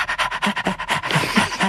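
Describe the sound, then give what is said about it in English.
A small dog panting rapidly, with quick, even breaths repeating about every tenth of a second, airy and breathy with a few higher whiny edges, and no talking over it. “He's still catching his breath with his tiny little breath.”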